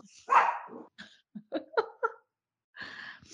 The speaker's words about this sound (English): Jeez, even Happy was in on it. Really? Oh my goodness. Okay, now these dogs are lit.